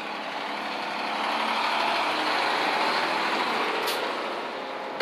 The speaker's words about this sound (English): Hold on, there's a truck coming.